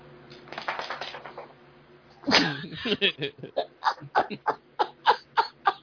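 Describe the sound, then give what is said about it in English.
A dog with big feet patters across a hard floor in a steady run of quick taps, following a few seconds of muffled voices and laughter. “Now you hear pitter patter her big feet.”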